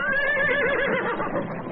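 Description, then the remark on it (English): Cow ponies whinny loudly at a corral gate, a sustained, wavering neigh with harmonic tones filling the short moment, with no voices present. “Confused, the ponies balk at the gate.”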